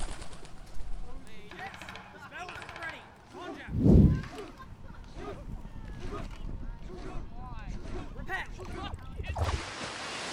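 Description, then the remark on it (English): A pigeon takes off right after eating crumbs, a sudden burst of flapping wings that fades quickly, set against a steady, busy outdoor background with faint murmuring voices. “the pigeon took a quick mouthful of crumbs, then launched herself into the air to follow him.”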